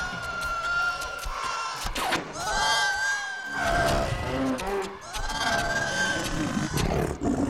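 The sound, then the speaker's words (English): A loud, sustained roar of the Acklay creature with shrill, wavering screeches on top, rising and falling in a few long bursts over a rough, growling rumble, with no talking. “Up next is the Acklay.”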